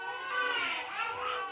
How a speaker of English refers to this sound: As fighting continues in Khartoum, babies in Maigoma, the country's largest orphanage, cry for milk.